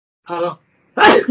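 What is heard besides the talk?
a sneeze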